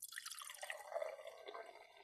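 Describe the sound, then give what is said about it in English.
Liquid pours steadily into a glass for about two seconds, a continuous splashing trickle with a shifting tone, quiet, with no voices. “All right, I'm not going to pour the whole thing because knowing me, I will fucking spill this everywhere.”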